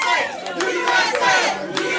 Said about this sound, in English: Isn't that great that the crowd, no matter what, yeah. I mean, that's just decades old, the old USA chant.